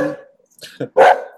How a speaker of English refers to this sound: Oh, you guys hear a puppy.